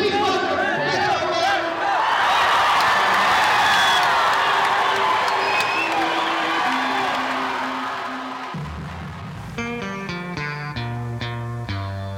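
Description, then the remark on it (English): A large crowd cheers and whoops loudly in the main hall for about eight seconds as Beto walks out. The roar then drops away as music with bright, steady tones takes over. “He walks out into the main hall. It's pandemonium.”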